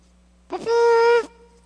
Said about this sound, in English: That wasn't much of a trumpet. That was more like a wounded elephant.